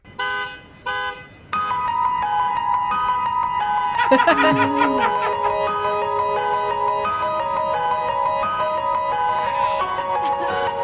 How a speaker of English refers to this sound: All right, let's listen to the sound of a professional keyboard player who had a car alarm going off outside his apartment, and he turned it into a beautiful song.